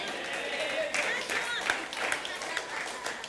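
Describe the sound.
An audience breaks into applause, a dense, steady wash of many hands clapping for a few seconds, with a few voices calling out faintly underneath.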